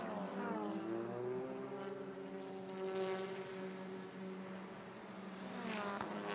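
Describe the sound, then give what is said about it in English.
The race leader's car, driven by Mark Wilkins, drones loudly and steadily, its engine pitch shifting as it slows into the pit lane, with no voices over it. “Here comes the number 37, Ryan Eversley, has to go to the right-hand side as the leader dives into the pit.”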